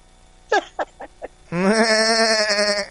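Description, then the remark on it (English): A goat lets out four quick, clipped bleats, then a long, loud, quavering bleat that wobbles on one pitch until the end. It is clear, with no talking. “Yeah, because when you get high with a goat, as I was saying before, you can't tell if they're laughing or making fun of you.”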